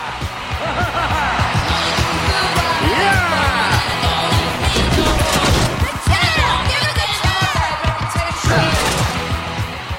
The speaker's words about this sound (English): The crowd is going nuts. They love him.